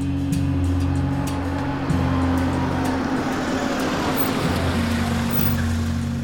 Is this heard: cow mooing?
no